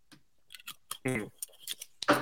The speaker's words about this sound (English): That was a two gulp one.